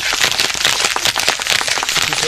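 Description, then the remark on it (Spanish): Steady applause from a group, many hands clapping in a dense, crackling wash of sound that stays loud and even throughout, with no voices standing out. “Ya le di el aplauso, ¿quieres otro?”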